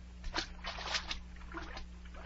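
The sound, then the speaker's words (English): A splash into a pool of salt water, then a few quick sloshing bursts of churning water over about two seconds, fairly soft, with a low steady hum running underneath and no voices. “Phew! Salt water. Now, how did that get...”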